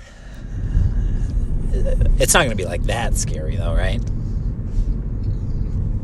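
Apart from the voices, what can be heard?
car driving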